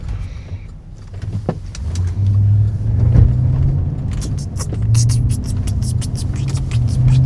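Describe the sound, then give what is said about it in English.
Steady low engine rumble from inside a moving car on a road with many cars, with road noise swelling and a series of sharp clicks and ticks near the end, no voices. “The one thing is going to be for sure, there are far more cars on the road than at 5 o'clock in the morning.”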